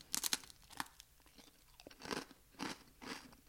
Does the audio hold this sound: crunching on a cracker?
yes